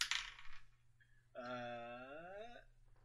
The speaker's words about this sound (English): Do so, and roll the dice.